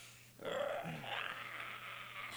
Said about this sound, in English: He didn't burp or fart. He did both. He did. At the same time.